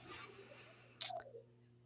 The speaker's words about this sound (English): You know our beloved sweet pet, our dog Cheerio, who shakes his collar from time to time. He likes to chime in every now and then. He doesn't want to be ignored. That's him in the background.